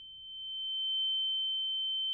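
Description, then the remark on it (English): A steady, high-pitched pure tone rings without a break for about two seconds, a thin whine over faint low rumble. “It's like ringing in my head.”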